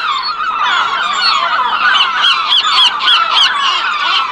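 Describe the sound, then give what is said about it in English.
A flock of seagulls at Sydney Harbour, around the outdoor restaurant tables near the Opera House, calling loudly, their squawks and cries overlapping in a dense, continuous chorus with sharper repeated calls toward the end, and no one speaking. “Some of those restaurants have seats and tables outside.And all that delicious food outside is irresistible, 无法抗拒, to the seagulls.”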